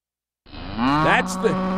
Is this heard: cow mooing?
yes